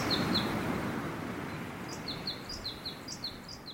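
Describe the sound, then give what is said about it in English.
A bird sings a quick series of high, bright chirps, repeated in a lively rhythm, over a steady low roar of wind rushing through trees. “the frequency of the bird song was higher than all of the roar of the wind.”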